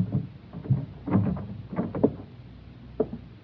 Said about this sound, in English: I waited a while, then tried the door.